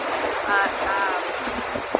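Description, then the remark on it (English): Steady wind roars across the microphone while good-sized waves wash and churn at a lake breakwater in a continuous, noisy rush, with a faint voice briefly murmuring underneath. “I don't know if you can tell from this video, but it's pretty windy. There's some good-sized waves out behind me.”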